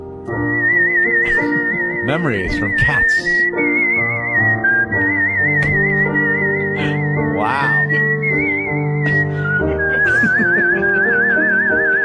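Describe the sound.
Someone whistles a slow song melody in long, sustained high notes with a wavering vibrato over steady instrumental backing, with a few brief spoken words partway through.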